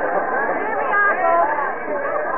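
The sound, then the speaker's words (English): A crowd at an auction murmurs and chatters, many overlapping voices forming a steady, fairly loud babble with no single speaker standing out, holding even for a couple of seconds. “Remember now, folks, remember, this auction will only interest the gentlemen in the crowd.”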